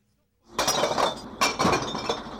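Glass bottles and jars crash and clink as they are dumped into a recycling truck, two loud bursts of rattling, shattering glass with a bright, jangling tail and no talking.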